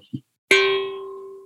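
A small steel drum is struck once with a mallet, giving a bright, ringing metallic note with clear overtones that sustains and slowly fades. A soft knock comes just before the strike.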